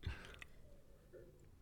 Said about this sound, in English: excuse me, let me get a little sip of water.